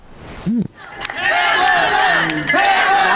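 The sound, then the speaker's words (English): A crowd at a rally in Oakland cheers loudly as Alameda County District Attorney Pamela Price is introduced, with rising whoops and shouted voices riding over a steady, dense roar that starts after a short yell and holds strong to the end. “Alameda County District Attorney Pamela Price was introduced to cheers, and then she broke into song.”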